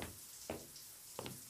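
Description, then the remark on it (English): Two separate, soft knocks by room service on the door of room 323 at the College Inn hotel in College Town, spaced less than a second apart, with no one speaking. “Hold on a minute, Gerda. Someone's at the door.”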